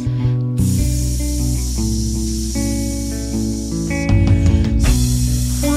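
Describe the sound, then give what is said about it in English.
A steady, breathy hiss from several voices imitating a snake, held for several seconds over a low sustained musical tone, briefly swelling louder near the end. “Yeah, I think the hissing is good.”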